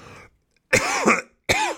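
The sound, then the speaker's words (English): Two loud, harsh coughs, the first longer and rasping, the second cut off sharply, preceded by a brief breathy rustle and a short silence. “That cough really fucked me up.”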